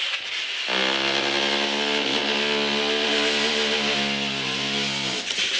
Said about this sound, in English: Sound like a motorcycle drove by, right? Hefty.